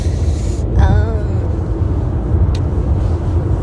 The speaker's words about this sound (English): We're just in the car on the way to Genoa Airport because we've got a flight tonight to Sardinia.